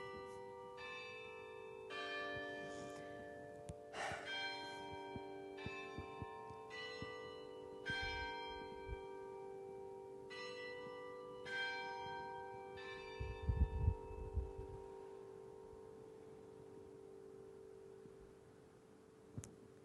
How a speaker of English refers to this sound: I imagine there are many of you who hear these Easter bells, who hear this hallelujah, who hear this Christ is risen, he is risen indeed.